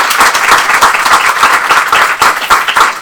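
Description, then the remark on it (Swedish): A short burst of steady applause from a small group for an organisation named one of three finalists in the Jämställdhetsbygget prize, many hands clapping in a dense, even patter that stays loud throughout with no voices on top. “Ja, men en applåd tycker jag.”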